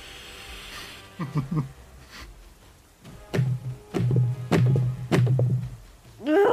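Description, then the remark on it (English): A series of dull thumps as a person repeatedly hits their head against a tabletop, a few early on and then several more in an uneven rhythm, with no speech. “That's me hitting my head against the table.”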